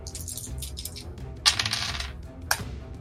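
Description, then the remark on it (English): Dice from the environment's dice pool for the room rattle and tumble across a hard surface behind a screen in a short, bright clatter, followed a second later by a second, briefer clack, with faint small ticks before, fairly quiet. “just rolling dice behind the screen!”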